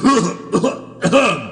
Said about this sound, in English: Your cough. It is nothing.